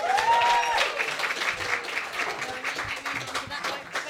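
An audience breaks into a steady round of applause, dense overlapping claps filling the whole clip at a fairly loud, even level, with a brief high whistle or cheer near the start.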